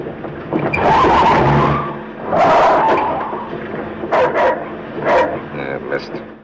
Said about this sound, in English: Missed. Yeah, that moment of almost running over, trying to run over the dog.